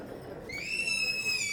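A young child lets out a single long, piercing high-pitched scream that starts after a brief murmur and holds steady and loud to the end.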